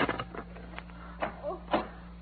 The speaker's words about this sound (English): Uh-oh, somebody's unlocking the door.